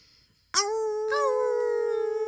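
Coyotes howling: a loud, sustained, steady-pitched howl breaks in suddenly, and a second howl joins a moment later, the voices holding together to the end. No talking.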